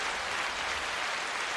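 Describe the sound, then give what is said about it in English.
Canned applause sound effect, played by pressing an applause button at the start of the Ninja News Show: a dense, steady wash of clapping that holds at an even, moderate level for under two seconds, with no voices over it. “Sorry, I really should stop pressing the applause button, but it makes me feel good about myself, and everybody needs that thing that makes them feel good about themselves.”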